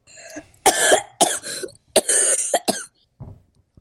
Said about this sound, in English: Do you want me to cough up an organ for you real quick?